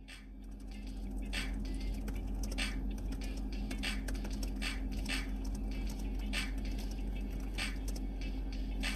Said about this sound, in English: Okay, I'm typing.